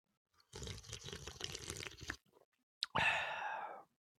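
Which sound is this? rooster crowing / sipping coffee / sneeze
sipping coffee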